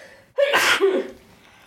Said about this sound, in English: Yeah, I'm sleepy. Don't yawn in the middle of the show. It's not the middle, it's the end. Don't yawn at the end of the show. You can yawn at the end of the show, I guess.